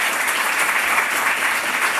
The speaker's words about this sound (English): And can I get a round of applause for our wonderful debaters?